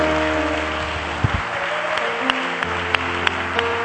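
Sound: audience clapping hands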